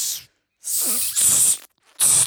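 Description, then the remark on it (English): A Foley steam-release sound effect: three sharp, loud bursts of hissing steam, each cutting off abruptly with short silences between, the middle two running almost together. “I'm letting the steam off the next story. Supreme Court. That's some good Foley.”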